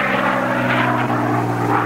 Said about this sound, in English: The highlight of these races, of course, are the Unlimited, a brutal test of power between World War II fighter planes.